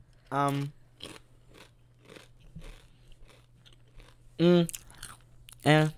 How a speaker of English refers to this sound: Sorry, I'm chewing my chips.